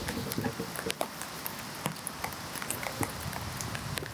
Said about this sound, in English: I don't know if you guys can hear it. But it's raining. Some more camping ASMR.